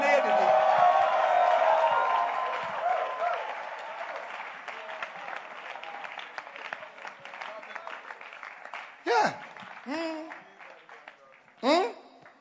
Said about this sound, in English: In the name of Jesus, clap your hands for the Lord and give the Lord a shout.